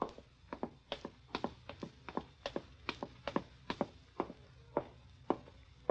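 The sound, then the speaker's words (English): Soft footsteps tap along at an uneven walking pace as someone walks softly to a stairway, a steady run of light clicks on a hard floor with no voices and little else in the background. “Open the door and walk softly to the stairway.”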